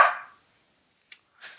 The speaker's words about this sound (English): No, the dog sees a Terminator outside or something and is running around barking.